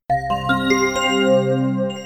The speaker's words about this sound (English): Well, did you hear the bells? It's time for the wrap.